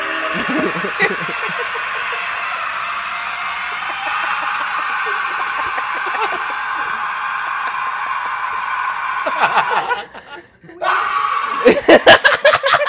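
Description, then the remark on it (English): Harsh, screamed singing vocals roar loudly and almost continuously, briefly dropping out before returning in rough, punchy bursts. “That dude is talented as fuck, yo. That dude is awesome. He's got some screams on him, dude.”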